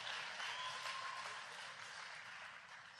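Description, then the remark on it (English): An audience at Celebration Church in Fresno, California claps for itself in sustained applause, a dense, steady patter of many hands that holds fairly loud for the whole stretch and eases only slightly toward the end, with no talking over it. “Yeah, you should clap for that. You should clap for yourself.”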